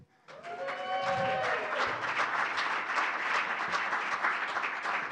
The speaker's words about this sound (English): And since it was on Facebook, I don't think it's a secret. We have a celebration, a round of applause that's due.